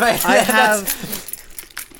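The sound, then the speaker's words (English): A voice makes a drawn-out sound, then a set of car keys jingles softly in a few brief, bright metallic shakes, quieter than the voice. “What if I jingle my keys to the screen?”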